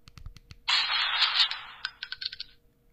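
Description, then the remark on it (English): A burner phone's default text-message tone made of gun sounds, a gun firing and reloading: a few sharp mechanical clicks, a harsh hissing burst of gunfire, then light metallic clinks of shells hitting the ground. No one speaks. “That is a gun firing, reloading, and then the shells hitting the ground.”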